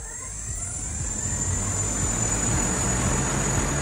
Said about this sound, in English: Recently, at a top secret testing location, a pilot took off in a flying car. Yep, it's actually about the size of 2 cars, but powered by 8 electric motors with 4 little propellers, 2 in the front and 2 in the back.